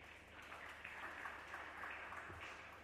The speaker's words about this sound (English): Number ten, very good, clap for yourself.